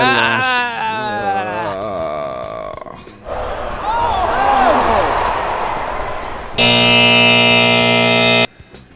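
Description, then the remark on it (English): A game timer buzzer blares loudly and steadily for about two seconds near the end as time runs out in a guessing game, after a stretch of warbling, bleat-like tones and noisy, chattering commotion. “Timer? You lost.”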